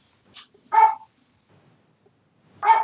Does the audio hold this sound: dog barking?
yes